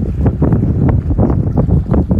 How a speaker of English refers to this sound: Oh, wow. It's windy where I'm at. Is windy where you are too? Is it gonna storm where you are too?